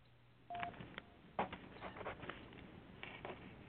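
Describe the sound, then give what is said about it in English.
Several short electronic keypad beeps from a telephone as phone lines are opened up for calls, spaced irregularly with faint clicks and rustling between them, fairly quiet against a low background hum. “Let me open up some cell phones, some phones here.”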